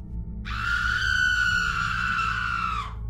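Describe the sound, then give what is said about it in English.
A single long, piercing, blood-curdling scream rises abruptly, holds shrill and steady for over two seconds, then trails off, echoing through a valley over a low, constant rumble in the background. “Suddenly, a blood-curdling scream echoed through the valley.”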